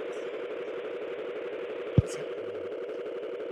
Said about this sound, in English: What's going on over there? What's up? It sounds like a truck.